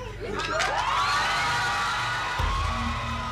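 A loud crowd of supporters erupts in sustained cheering and chanting, many voices shouting and whooping together with rising, high-pitched cries that stay strong throughout the burst, as a man is found not guilty of rape.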